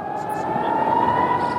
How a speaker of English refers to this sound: The wail of an air raid siren persuaded Jewish worshippers at the Western Wall to flee and run for cover.